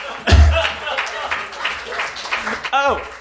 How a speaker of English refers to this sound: Clap again.